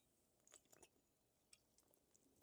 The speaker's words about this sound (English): Let me take a sip.